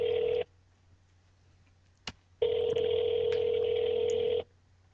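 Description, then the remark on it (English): Outgoing phone call ringing: a steady electronic ringback tone sounds briefly, falls silent, then rings again for about two seconds, clear, with a faint click in the pause and no talking. “It's not even ringing.”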